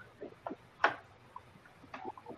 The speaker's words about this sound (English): That timer is ticking.